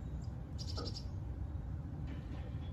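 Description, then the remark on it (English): A quick run of high, thin chirps from two or three birds, a few rapid notes in a burst followed by fainter calls, over a steady low background hum with no one talking. “Get out of here, birds.”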